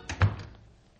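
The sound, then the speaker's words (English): A house door shuts with a solid thunk as a departing electrician leaves, preceded by a brief rattle of the latch, then a short fading resonance and quiet; no voices. “That electrician practically froze the house holding the door open like that.”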